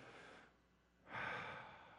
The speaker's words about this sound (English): We're all breathing the breath of life. Let's just all do it together, out loud, to breathe, okay?